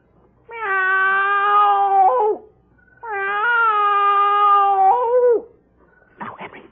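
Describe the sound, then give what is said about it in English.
A man's voice on the front porch of a house imitates a cat with two long, drawn-out meows, each sustained and wavering before dropping off, followed by a brief rustling noise at the end. “Now, I meow twice.”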